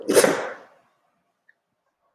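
A single sharp, breathy sneeze bursts out and trails off within half a second, followed by silence and a faint click at the end.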